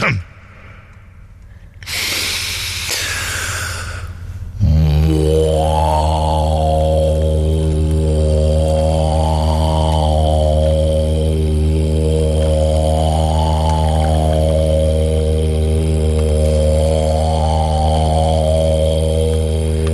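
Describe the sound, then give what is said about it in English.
After a sharp breathy inhale, a voice hums a low, steady drone for about fifteen seconds, its tone slowly wavering up and down in a regular cycle, imitating a droning machine. “It was a good drone, wasn't it?”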